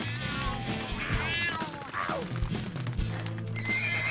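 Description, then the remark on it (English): A horse whinnies loudly with rising and falling squeals while hooves clip-clop in an uneven rhythm, mixed with some background clatter. “Where did they get horses?”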